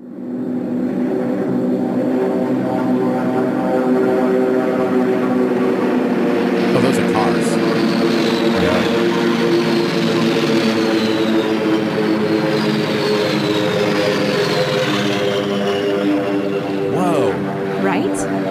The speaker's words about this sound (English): It is a fighter plane squadron.